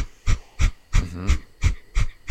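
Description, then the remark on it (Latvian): A rapid, steady series of about seven sharp, forceful exhales through the nose with the jaw slightly open, done as a nose-unblocking breathing exercise, evenly spaced roughly three per second, fairly loud, with no talking. “Tad ir degunu atbloķēšanas vingrinājumi, kas pie reizes arī trenē muskuļus, tātad asas izelpas caur degunu, žokus nedaudz vaļā.”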